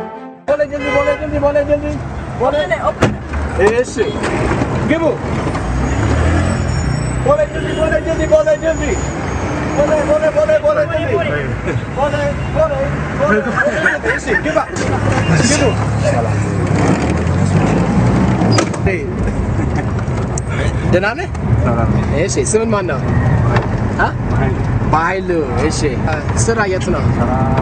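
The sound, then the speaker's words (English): A busy city street in Ethiopia: steady traffic rumble with engines and occasional horn toots, under a crowd of voices where a wayala, a taxi cab's assistant, repeatedly shouts out the parts of town the taxi is going to in a loud, sing-song call. “And a wayala is kind of a taxi cab's assistant that goes around the city and yells out random parts of town that the taxi cab is going to.”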